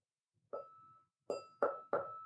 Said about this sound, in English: Do y'all recognize that? No, it sounds like a glass that you're hitting. Okay, so that is a tequila called Clase Azul. I have a bottle sitting next to me, actually.